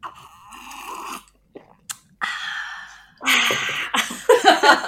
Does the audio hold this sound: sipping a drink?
yes